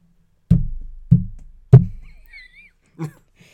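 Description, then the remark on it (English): A hand knocks on a hard surface to imitate peg-leg footsteps: three loud, hollow thumps in a steady limping rhythm, then a softer one after a pause, with a faint squeak between. “That was me with the peg leg because I realized my hand was way over here.”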